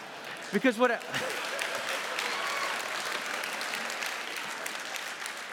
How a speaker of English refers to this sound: You know you're clapping because you're stupid.